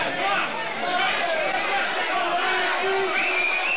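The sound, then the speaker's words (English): A large crowd yells and screams all at once, a dense, unbroken roar of many voices holding steady in loudness, with a few higher-pitched cries rising above the din. “The Linux faithful are going to scream when I say this, but there is no software for Linux systems.”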